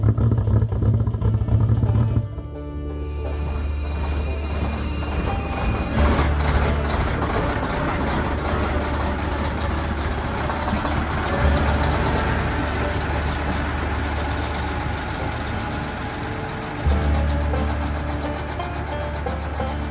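Heavy military truck engines rumble in a loud, continuous low drone, rising into a fuller roar after a few seconds as the vehicles drive on steadily, with no voices.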